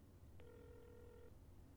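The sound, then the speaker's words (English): A single ringback tone as someone phones their landlord, one steady electronic buzz lasting about a second, heard through the earpiece over a low background hum, with no one talking. “It's ringing.”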